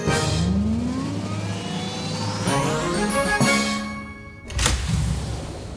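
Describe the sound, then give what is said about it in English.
A pretend time-machine sound effect for time traveling: whirring electronic tones glide up and down over a steady hum, broken by sharp whooshing bursts, with a final loud whoosh near the end. No one speaks. “Okay, let's jump in our pretend time machine and start time traveling.”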